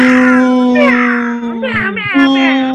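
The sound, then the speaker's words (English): A cat meows in a drawn-out, wavering way, with a couple of rising and falling cries over a steady background tone, fairly loud. “The cat translator is like, I think he just said he's going to drive you all off a cliff.”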